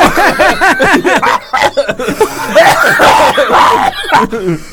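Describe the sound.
A loud coughing fit: a run of rapid wheezing, hacking bursts with strained voiced gasps between them, continuing in ragged fits for several seconds.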